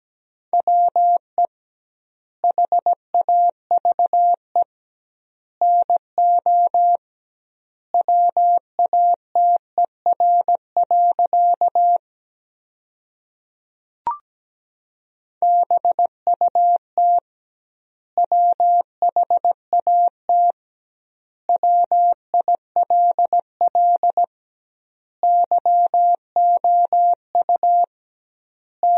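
Morse code at 17 words per minute with doubled word spacing, sending sentences built from the top 100 words: a single steady mid-pitched tone keyed on and off in rapid dots and dashes, grouped into words with short pauses, broken once by a brief click.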